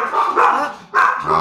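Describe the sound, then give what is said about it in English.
Dogs bark loudly in a couple of quick, overlapping bursts with a brief pause between them, with no one talking over the noise. “We just had to get the dogs out.”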